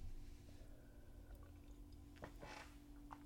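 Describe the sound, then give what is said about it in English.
Someone takes a quiet sip of a drink: a few soft, wet slurping and swallowing sounds in the second half, over a low steady hum with no talking. “And so let me take a sip.”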